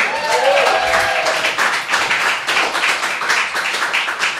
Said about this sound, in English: I would like to have an enormous round of applause for our Wizard in Light and Sound. He puts the extra D in D&D&D.